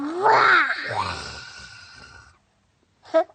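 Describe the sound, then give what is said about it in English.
A child's voice gives a drawn-out, growling roar that rises and falls in pitch, imitating a tiger, then trails off into a breathy rumble before a short voiced sound at the end. “Tiger. And show God, what does a tiger say?”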